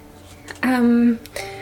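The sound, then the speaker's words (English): A single loud sneeze with a sharp burst that stretches into a drawn-out, voiced, tonal tail, framed by faint breathy vocal sounds before and after. “Gesundheit.”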